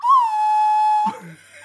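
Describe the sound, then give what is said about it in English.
A death whistle blown once, giving a loud, steady, reedy pitched tone that holds for about a second and then cuts off, followed by faint voice sounds. “But mine was supposed to be a death whistle, but it's like.”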